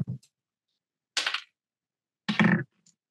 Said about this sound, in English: Okay. Shall we roll our dice to see who gets in first?